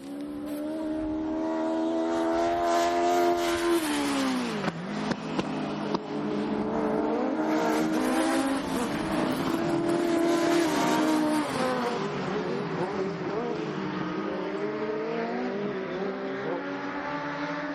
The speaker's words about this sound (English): And the first race that's on since I've arrived is just starting. I can hear the cars coming in a distance. I think I'm standing somewhere down the end of the home straight, so here they come.